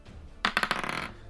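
Dice clatter across a hard tabletop: a sharp first strike followed by several quick bright rattles that tumble and settle within about half a second, with no voices.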